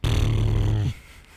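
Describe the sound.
A middle-aged man buzzes his lips to imitate a tractor engine: a loud, low, steady rumbling drone lasting just under a second that cuts off abruptly, leaving near silence.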